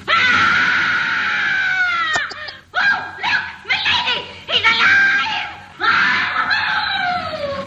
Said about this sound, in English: She gives like a goofy scream at the end of it. It has a little goofy holler. I love how much of Minnie's lines are literally just her screaming.